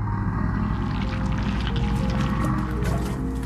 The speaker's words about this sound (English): So finally, when this hits him, the whale throws him up in a giant pile of ocean vomit.